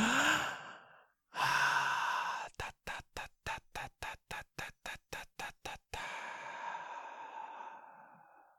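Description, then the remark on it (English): Voiceless breathing exercise done silently: a breath in and a long exhale, then about a dozen quick, evenly spaced forceful puffs of breath, ending in a long, drawn-out sighing exhale. “But you can do this breathing without the voice as well. So just to do it silently, it would be...”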